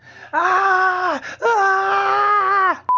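A person lets out two long, loud, sustained screams with a steady, wailing pitch, separated by a brief pause, followed by a short electronic beep at the end.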